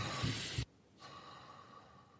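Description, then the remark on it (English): A single loud breath exhaled through the nose during a guided breathing exercise, lasting about half a second, followed by near-silence with faint background noise. No one speaks. “And I invite all of you to just breathe 1 breath with me right now through your nose. Exhaling through the nose.”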